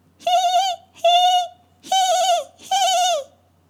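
A bird gives four loud warning calls in steady succession, each a short buzzy, harmonic-rich note with brief pauses between, and no voices. The birds call in the wilderness amid falling snow on a brisk day, warning that a stranger is passing.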